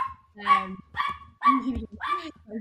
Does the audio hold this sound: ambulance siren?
no